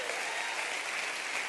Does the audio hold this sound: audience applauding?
yes